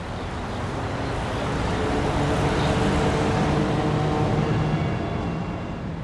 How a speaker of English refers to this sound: that's what traffic sounds like on a highway or downtown streets today.